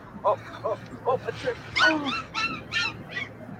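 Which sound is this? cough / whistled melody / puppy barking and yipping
puppy barking and yipping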